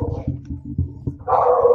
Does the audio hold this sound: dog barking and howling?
yes